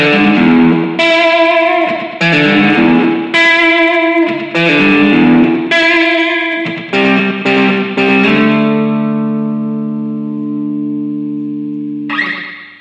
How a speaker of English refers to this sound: And then we'll have a little bit of that jangly guitar just to herald the start of this week's TFM.